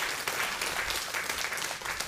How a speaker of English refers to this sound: So, let's give Jesus a hand clap. He's the healer.